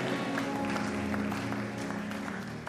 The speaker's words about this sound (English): If you are clapping your hands, may you receive a testimony in the name of Jesus.